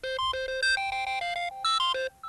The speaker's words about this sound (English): In fact, my regular iPhone ringtone is this, and I want to just hold it up to the microphone here after I get it going, and let me change it to something else. And here's my ringtone.